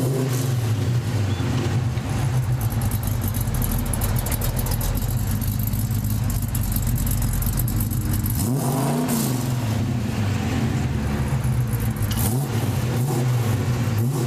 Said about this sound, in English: But you cannot argue with the goodness that is the small block Chevy V8. An LS engine? Absolutely.